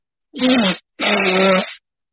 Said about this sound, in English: I apologize. I got to blow my nose. I got like one big honker here.